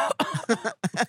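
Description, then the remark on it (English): A voice imitates a dainty, high-pitched, feminine cough: a quick run of short, voiced bursts with brief pauses between them, moderately loud. “And and I was on stage and I was like, yeah, he was coughing. Coughing in a very feminine way.”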